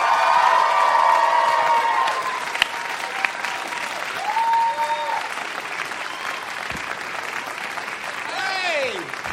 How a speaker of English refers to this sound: Please give it up, everybody, my friend Chelsea Peretti!